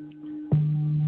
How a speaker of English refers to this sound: I'm going to put on a gong, and you're going to hear this gong come on here. And just keep breathing gently.